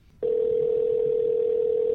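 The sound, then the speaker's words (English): A steady telephone dial tone clicks on after a brief moment of quiet and holds at an even, fairly loud level without a break, with no voices or dialing beeps, as a call is placed to reach someone on the phone. “we actually are going to try to grab him on the phone.”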